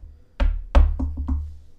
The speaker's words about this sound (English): Knock on wood.